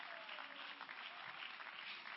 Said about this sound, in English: Clap your hands unto the Lord if you believe it.